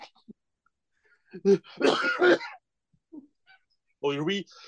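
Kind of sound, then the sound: human body sound, sneeze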